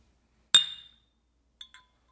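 A drinking glass gives one bright, ringing clink that fades over a moment, then two quick softer taps as it is picked up, close by with no talking.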